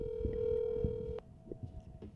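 A phone call being placed: a steady dial tone gives way after a sharp click to a higher, continuous ringing tone on the line, with faint low background rumble and no voices.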